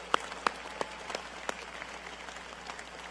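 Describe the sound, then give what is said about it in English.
An audience applauds the workers who built the Fiserv Forum in Milwaukee, with a handful of sharp individual claps standing out early over a steady, soft wash of clapping that continues throughout. No one speaks. “Let's give a big round of applause to all the men and women who worked to make the Fiserv Forum as beautiful and spectacular as it is today.”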